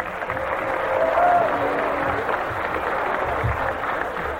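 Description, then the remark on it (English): An audience applauds four young girls called up to the front, with dense, steady clapping that holds at an even, fairly loud level for several seconds, with a faint voice or cheer rising briefly early on. “Give them a real good clap.”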